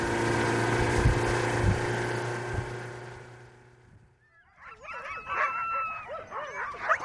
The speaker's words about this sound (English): Back on the island, teams of huskies bark restlessly in the midday sun, tethered to squat wooden doghouses.